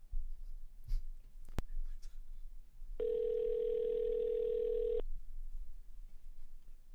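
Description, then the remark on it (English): A telephone ringing over the line as a call is patched in: one steady, buzzy electronic ring tone lasting about two seconds, fairly loud, preceded by a faint click and low background rustle, with no talking. “Yeah, we're ringing now.”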